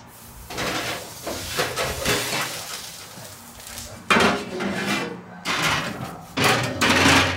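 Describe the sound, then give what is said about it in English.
Metal clatters and scrapes as a pie pan is slid into a 425-degree oven to bake for about 10 minutes so the crust browns, with a few sharp, loud bangs and rattles near the end and a soft hiss between them. No one speaks. “Okay, so now I'm going to put it in a 425 oven for about 10 minutes so that the crust gets brown.”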